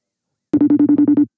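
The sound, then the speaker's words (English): A telephone rings on an outgoing call: one short, loud burst of rapid electronic pulses, about seven quick beats in a row, clear and alone after a moment of silence. “Oh, yeah, it's ringing.”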